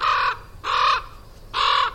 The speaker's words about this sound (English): And eagerly picking through the riches strewn across the sidewalk are several black birds. They're crows. Or ravens. No, definitely crows. Maybe? How can you tell the difference? Well, first off, listen. Crows caw. While ravens croak.